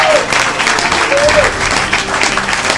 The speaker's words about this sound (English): Wait. Why are people applauding? No one's been applauding before.